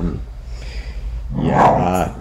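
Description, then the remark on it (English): A pet dog named Ringo growls low, then breaks into a loud, harsh bark-like outburst that lasts under a second before trailing off. “Sorry, my dog.”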